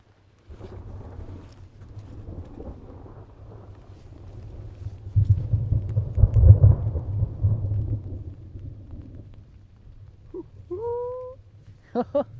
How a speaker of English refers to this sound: Ooh. Lightning strike. Get ready for the thunder. Big flash, here comes the thunder.